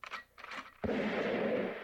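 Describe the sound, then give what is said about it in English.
A single gunshot sound effect, its EQ dialed back to make it muffled, lands with a sudden dull thump, followed by a long, dark rumbling tail that slowly fades. A few soft rustling bursts come just before the shot. “I feel like this morning I need like a gentle gunshot.”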